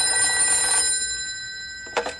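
A telephone at ranger headquarters rings with a bright, steady metallic trill that lingers and fades, then a short second burst of ringing follows near the end; the call is from the Pentagon. No one speaks.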